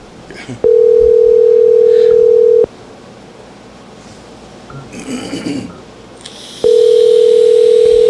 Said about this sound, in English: Let's see if she answers the phone.